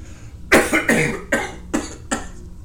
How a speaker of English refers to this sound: I am overcome by a coughing fit. My skin has begun to ache. My head throbs, and my body is trembling.